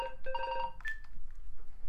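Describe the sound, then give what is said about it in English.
An electronic phone ringtone trills in short bursts of bright, steady tones, then a single higher beep trails off into low background noise, fairly clear, with no talking. “One, and now the phone. Right, hang on a second.”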